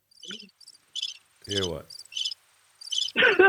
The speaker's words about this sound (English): Crickets. When I walk on, then it's that.